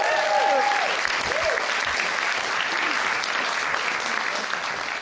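An audience claps steadily for about five seconds, a dense, even patter of many hands that stays loud throughout, with a brief whooping cheer rising over it at the start.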